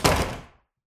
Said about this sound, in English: I'd say we can start with a crack of the museum doors being slammed behind you as you guys get kicked out of the museum.